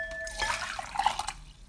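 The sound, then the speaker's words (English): Hot water used to preheat a matcha tea bowl is poured out of the bowl in a short splashing stream lasting about a second, with a few bright drips and gurgles as it empties; a faint high tone rings briefly at the start, and no one speaks. “And the best way to do this is to kind of preheat the bowl as well, so it kind of retains that heat longer. So I'm gonna go ahead and pour this out.”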